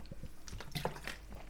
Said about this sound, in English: So, excuse me, guys, just drinking some water here.